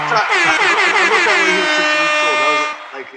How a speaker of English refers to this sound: Come on, air horns, man.